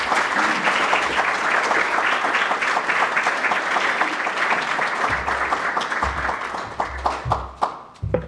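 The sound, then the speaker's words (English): An audience at the Center for Strategic and International Studies applauds steadily to welcome Pakistan's Foreign Minister Qureshi to the stage, a dense wash of many hands clapping that holds its level, then thins toward the end with a few louder, separate claps and low thumps. “So could I ask you, with your very warm applause, please welcome to the stage His Excellency, the Foreign Minister of Pakistan, Minister Qureshi.”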